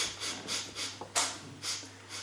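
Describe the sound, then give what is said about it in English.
A person sniffing repeatedly to sense a ghost: about six short, airy, hissing inhales in a fairly steady rhythm, with one sharper sniff in the middle and no talking. “Ah, I am sniffing.”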